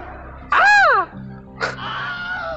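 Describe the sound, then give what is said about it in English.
A person's voice imitates the Wilhelm scream with one loud, short yelp that rises and falls in pitch, followed by softer, breathy vocal noise. “Was that pretty close, Scream?”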